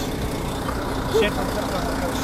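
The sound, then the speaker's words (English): A bus engine idles with a steady, low, continuous rumble that fills the whole stretch, with faint background voices murmuring underneath, as people get on the bus. “We're going on the bus right now.”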